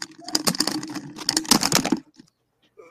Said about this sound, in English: God dang, keyboard, dude. Yeah, right in the ear.